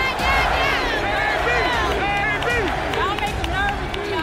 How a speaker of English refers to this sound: Being encouraged by this vociferous crowd at MGM Grand, who made the flight from the Philippines, and we're hearing from those people now.